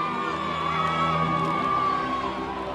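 A dense, sustained roar of a large crowd cheering and whooping along a motorcade route as the Pope approaches the city centre, with high shouts and yells layered throughout, loud and continuous as if surrounding the listener.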